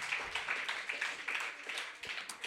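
A crowd applauds steadily, giving another round of applause for the eighth performer of the night, a dense wash of many hands clapping at once with a few sharper individual claps standing out, sustained at a fairly even loudness throughout.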